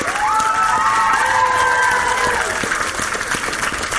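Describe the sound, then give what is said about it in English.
An audience at a live event claps steadily for Hagrid in a dense, continuous wash of applause, with high voices cheering and whooping over it in rising and falling tones. “Round of applause for Hagrid, everybody.”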